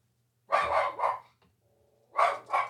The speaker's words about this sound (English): Yeah, the dogs right at this time get very active as someone shows up at your doorstep. And you never know who it is, do you?